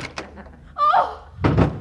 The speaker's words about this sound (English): Open the closet door. Okay, boss.